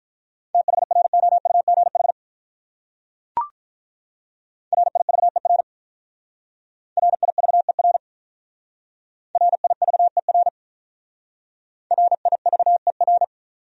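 Fast Morse code beeps at 35 words per minute on a steady mid-pitched tone, sent in five quick bursts of dots and dashes with short pauses between them and a single brief click partway through.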